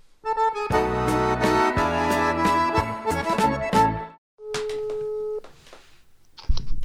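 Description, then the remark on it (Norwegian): An outgoing phone call to a family member: a few seconds of loud, busy electronic tones, then a steady one-second ringing tone, followed by a brief pause and a click-like pickup at the end. “Han ringer vi, vet du.”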